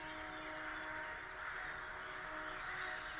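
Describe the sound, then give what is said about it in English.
A flock of crows caws harshly and continuously as they dive-bomb, several birds calling over one another in a loud chorus with a few sweeping squawks, no voices present. “The army of crows dive bomb the Fomorian foe.”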